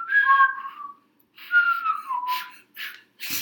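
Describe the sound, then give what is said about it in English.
A few short, wobbly whistled notes come in brief spurts with small gaps between, fairly quiet, interspersed with breathy puffs of air as the whistle falters, from someone who can't whistle well trying to whistle. “I can't whistle well. I can get, like, little spurts.”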